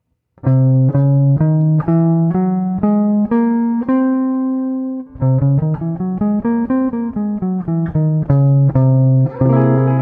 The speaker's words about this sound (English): Now, the first one I want to go over is the altered scale, It's, it's very common. It's essentially goes like this.